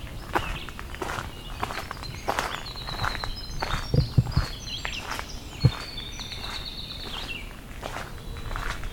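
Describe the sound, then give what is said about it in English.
A winter wren sings its long, rapid, high-pitched tumbling song, nearly continuous over the stretch, while footsteps crunch steadily. “Our winter wren with its really long song.”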